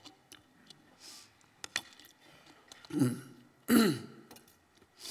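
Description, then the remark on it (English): Someone drinks water: soft clicks and small swallowing sounds, then two louder throat-clearing bursts near the end. No talking. “And while these, excuse me, I'm going to take a drink of water.”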